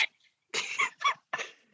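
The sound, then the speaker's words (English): A dog barks three times in quick succession, sharp bursts with short gaps between them, and no talking underneath. “sorry, this dog is barking and it's annoying me.”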